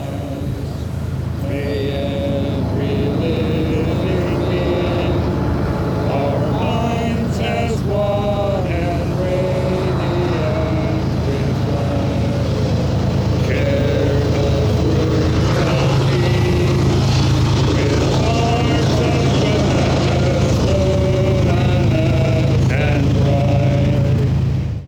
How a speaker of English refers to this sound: It's the feeling of friction, metal on metal. Today, the train drowns out the sounds of cars on the highway farther up the slope.